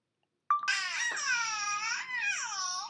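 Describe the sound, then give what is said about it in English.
A baby girl, who has been given a phone to play with, babbles in one long, loud, unbroken vocal stretch, the pitch sliding up and down with a brief dip and rise near the end; no adult speech is present. “I'm not worried about it because it's a baby, and so she probably can't understand us anyway.”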